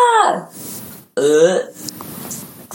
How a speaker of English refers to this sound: I called you out, and then you burped. Like, all in the same thing.